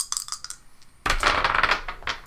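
Dice clatter on a hard tabletop for a dexterity roll in a game, a few sharp clicks at first, then a dense rattle as they tumble and come to rest. No one speaks.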